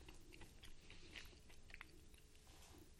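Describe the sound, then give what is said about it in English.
Crisp chewing of a stale graham cracker, with repeated crunchy bites and mouth sounds spread across a few seconds, no talking. “That's exciting to hear you chew.”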